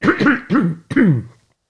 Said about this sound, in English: I'm just going to clear my throat, excuse me.